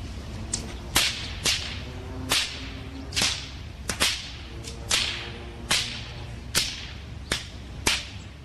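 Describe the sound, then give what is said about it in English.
A bullwhip cracks again and again, about a dozen sharp, loud snaps in a loose, uneven rhythm, each a quick whoosh ending in a bright crack over a low background hum; two men cracking bullwhips in a downtown park in broad daylight, recorded on a cell phone video. “It shows a couple of guys with bullwhips cracking them in a downtown park”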